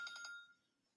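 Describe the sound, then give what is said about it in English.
A phone reminder alarm chimes in the mid-afternoon in three quick bright electronic pulses, then its ringing tone lingers and fades out within a second. It sounds fairly soft, with no talking. “So I apologize for my mid-afternoon alarm chiming in there.”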